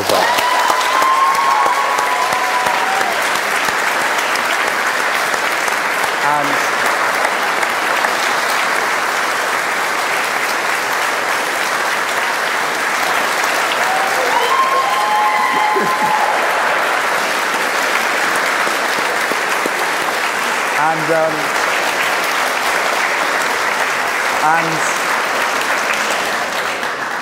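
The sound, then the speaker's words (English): A long, steady round of applause from an audience, dense clapping that holds loud and even for nearly half a minute, with a few faint voices and whistles poking through the crowd noise. “On that note, I think we should all give you a round of applause.”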